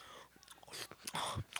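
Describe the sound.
A voice mimics loud chomping on a crunchy burger, a rapid series of wet crunches and bites over under two seconds, with no words spoken.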